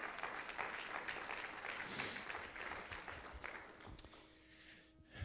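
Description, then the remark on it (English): An audience claps together in a steady burst of applause lasting several seconds, the dense patter of many hands gradually thinning out toward the end, with no one speaking over it. “Give him a hand clap.”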